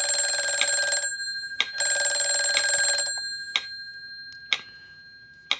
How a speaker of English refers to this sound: The phone. Here? Who would know? No, let it ring. Let it ring.